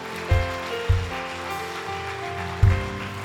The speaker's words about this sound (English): Come on, let's clap to the Lord.